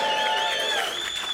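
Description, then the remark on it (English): A dense, steady burst of audience applause with some cheering mixed in, loud, filling the whole moment without any talking over it; a round of applause for a first rugby input on House of Rugby. “Can we just have a round of applause”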